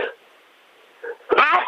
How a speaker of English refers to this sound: Bless you. Oh, sorry, just sneeze.